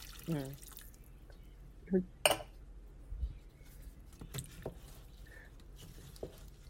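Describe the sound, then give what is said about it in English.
Water drips and small splashes land irregularly, a handful of sharp plinks spread apart over quiet background noise, with faint muffled voices now and then. “No, I hear water.”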